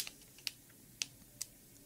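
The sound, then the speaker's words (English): Four crisp computer keyboard keystrokes tapped at a slow, uneven pace, fairly quiet, with no talking. “Let me look at the keyboard.”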